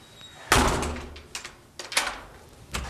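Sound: door shut and locked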